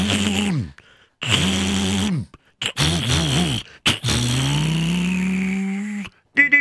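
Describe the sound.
A human voice imitates a chauffeur starting a car engine and revving it, giving several loud, buzzing vroom bursts that rise and fall in pitch, with a longer drawn-out rev near the end.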